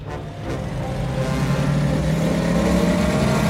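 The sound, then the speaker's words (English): A BMW car engine revs and accelerates, its steady mid-pitched drone rising gradually in pitch and loudness over a few seconds, with no voices heard. “This baby will do 130.”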